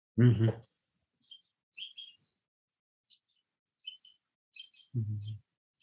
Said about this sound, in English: Also the bird from Hawaii, I hear. I don't know if there also was like birds in the music. That was this.